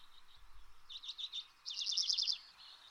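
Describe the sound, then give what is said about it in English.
Hoary redpoll, a small round Arctic finch of northernmost North America, calls: a short burst of high, twittering chirps, then a longer, denser run of rapid trilled notes, heard alone with no talking. “This little round Arctic bird is called the hoary redpoll.”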